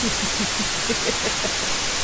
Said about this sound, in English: You idiot, stop listening to white noise.